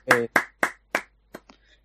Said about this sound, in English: Congratulations, Asher. Round of applause.